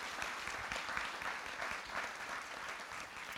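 A crowd claps steadily and continuously, a dense wash of many hands applauding together in a large room, sustained at an even level throughout without any voices rising above it.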